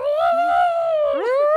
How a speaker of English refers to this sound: Is this an actual hyena? Oh, it's an elephant. I'm looking at something. No, but you cannot as a hyena. A weirdest elephant. That's not even intimidating. I always heard a hyena's laugh was really like, like really cackling.